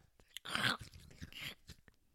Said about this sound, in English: Oh gosh, don't do that. I don't. Sorry. You can chew food. That's fine. It's not about that. It's just the loud.